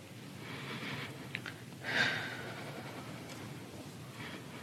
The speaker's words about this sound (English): Now, of course, here she's gathering her thoughts for theatrical effect, for performance art. She's breathing heavy, doing what she does.